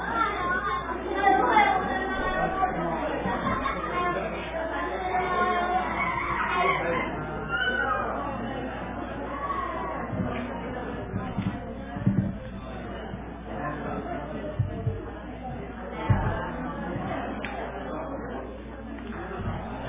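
A church audience at a worship service, adults and children, greets the people next to them before the message: many overlapping voices chatting and greeting one another at once, a steady indoor murmur with occasional knocks and thumps, no single speaker standing out.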